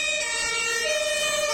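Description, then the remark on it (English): A loud emergency vehicle siren wails steadily, its bright tone stepping to a different pitch partway through, with no voices over it. “And the police have not been called. And an ambulance has not been called. Or the fire brigade.”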